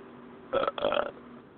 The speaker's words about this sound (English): at least that belch doesn't rub anyone the wrong way, like you did.